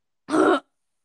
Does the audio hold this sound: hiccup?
yes